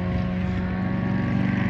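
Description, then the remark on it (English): Motorcycle engines drone steadily and loudly, a low rumbling hum with a constant pitch that neither rises nor fades. No one speaks. “Like, those motorcycles are one thing, but now there's another siren.”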